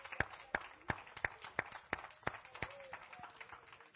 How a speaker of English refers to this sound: One more time, let us clap unto the Lord.